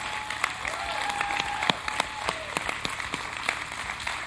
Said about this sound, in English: Stand up. Give them a hand clap. Turn around and let them look at you.